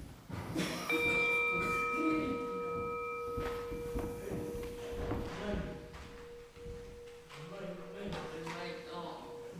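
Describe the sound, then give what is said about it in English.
A singing bell is struck once as a candle is lit at the opening of a church service, and rings out in a long, sustained shimmering tone with several clear overtones, slowly fading over a background of low murmur and rustling. “So we begin our service by opening our hearts and minds, and as we light the candle and hear the sound of the singing bell.”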